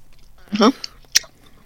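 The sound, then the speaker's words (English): Chewing of a long, large stick of sticky, chewy Laffy Taffy candy: a short murmured hum followed by a couple of moist smacking clicks, brief and quiet, with no clear speech. “Does melt away in your mouth as you chew it, though.”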